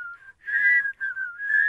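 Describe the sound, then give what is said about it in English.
A person whistles a short, wavering tune, a few sustained notes rising and falling with brief breaks between phrases, with no talking. “Hey, I'm sort of whistling, by the way.”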